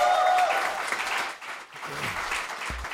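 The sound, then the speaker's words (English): A crowd applauds steadily for a band, a dense wash of clapping that stays fairly loud throughout, with a few whoops and a brief low thump near the end. “All right, y'all, give that band another round of applause.”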